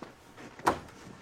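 A door swings shut with one short, solid thump that fades quickly, set against a faint, quiet background with no talking.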